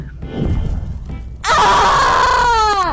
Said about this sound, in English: Oh, you're kind of cute when you scream in agony like that. That's right, let me hear you.